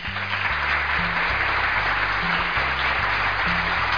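Steady crowd applause fills the whole stretch, a dense wash of many hands clapping at once, with a low stepping bass line of musical notes playing beneath it.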